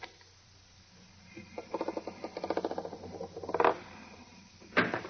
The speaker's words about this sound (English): That time clock set inside the vault door, it's set to open the door in 2 hours. And if I rip the steel back a little, just enough to reach the clock, like this, there, and then set the clock at 2 hours like this, door should open.